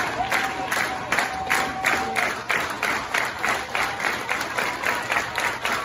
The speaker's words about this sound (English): A lot of clapping. There's a lot of clapping. Tons of clapping. Great crowd today.